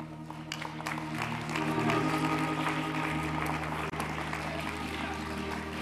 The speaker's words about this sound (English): Give that clap of praise unto God. Hallelujah.